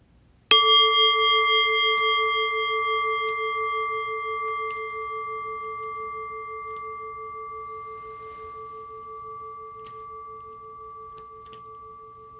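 A single meditation bell is struck once and rings out with a clear, sustained tone, slowly fading over several seconds in an otherwise quiet space. No one speaks.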